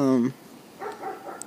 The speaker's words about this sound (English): I don't know, that's a loud dog, though.